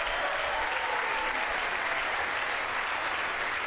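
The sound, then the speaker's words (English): Sustained applause from an audience during a speech at a podium on Tuesday night, March 1, 2022: a dense, steady wash of many hands clapping at once, fairly loud and even throughout with no talking over it. “The ups and the downs of the clapping and the hellos.”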